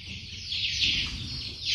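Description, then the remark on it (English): Chickens reared by a security man inside an unused government storage warehouse in the Nankana area cluck and chirp in a steady, overlapping chorus of high-pitched calls, with a low rumble of background noise underneath and no talking. “The government has not put the warehouse to use, so the security man there has started rearing chicken in the warehouse.”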